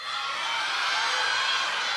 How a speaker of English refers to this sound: Okay, I'm just getting to learn who's here. All right, now yell at me your school. Who else is here?